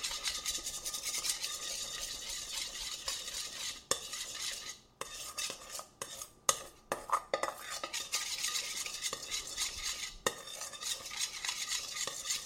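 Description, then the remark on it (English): A utensil stirs the last egg steadily into thick batter in a bowl, a continuous wet scraping broken by a few brief pauses and sharp clinks against the side. No one speaks. “And then finally your last egg. And stir that in as well.”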